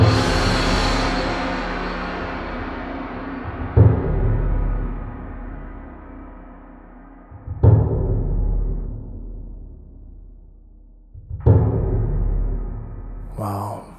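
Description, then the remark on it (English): Orchestral percussion, a composite of kettle drums and an Asian-sounding gong: four booming strikes spaced evenly about four seconds apart, each leaving a deep, shimmering ring that slowly fades before the next. No voices. “For the percussion in this piece, I've used a composite of normal orchestral percussion, like kettle drums, but I've also used an Asian-sounding gong.”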